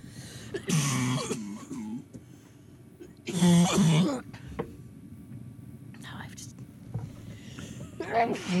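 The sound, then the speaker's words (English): Two loud sneezes a few seconds apart, each a sharp burst with a voiced edge, followed by quieter breathy sounds and a soft sniff near the end. “Bless you. Thank you.”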